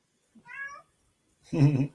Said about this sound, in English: Sounds like my cat wants to come in on the video. Yeah, my cat wants to get in on the video.